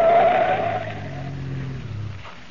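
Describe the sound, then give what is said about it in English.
A car, floored and tailed by another car, runs at a curve and swerves hard off to the side of the road, its tires letting out a brief high squeal over a loud, steady engine drone that slowly fades as the vehicle settles, with no voices. “I ran at the turn and then cut off to the side of the road.”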